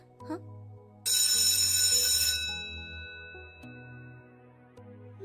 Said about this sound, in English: The bell just rang!